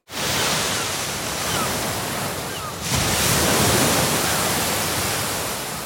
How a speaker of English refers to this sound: Listen to this. Here's what ocean waves sound like on Earth.